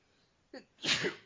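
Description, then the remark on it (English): A single fairly loud sneeze, with a short sharp inhale followed by a bright, explosive burst that trails off over about half a second. No talking. “Gesundheit.”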